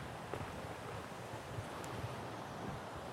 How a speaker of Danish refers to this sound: Kan du høre vinden i bladene? Vinden suser i bladene. Og vinden suser i bladene, og bladene op mod den blå himmel og de kridhvide skyer, der pisker afsted.